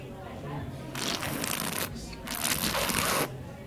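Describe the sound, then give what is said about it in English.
Two long, airy slurps, a breathy hiss of air drawn through a mouthful of wine, each lasting about a second with a brief pause between, fairly loud against quiet background. “So then what you do is you take a sip, and then what we do in the wine industry is this.”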